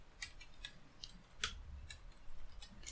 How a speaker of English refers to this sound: what am I typing in again? Operation High Jump? No, Russian. Oh, yeah. Russian high jump video or something like that.